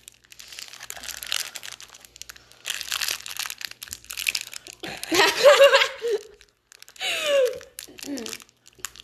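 Crackly crinkling of plastic packaging being pulled and torn in repeated bursts, followed by brief laughter and a few voices near the end.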